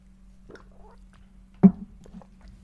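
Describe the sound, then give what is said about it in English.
Someone takes a quick drink of water: soft wet mouth sounds and sips, then one sharper gulp, all quiet over a steady low background hum, with no talking. “Before I move on, let me get a quick drink of water real quick.”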